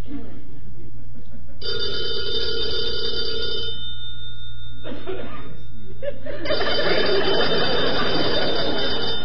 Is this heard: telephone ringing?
yes